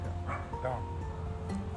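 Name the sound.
dogs barking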